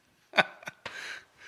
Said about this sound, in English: Coughing into the mic.